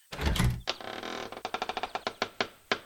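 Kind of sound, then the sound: household object, trap door opening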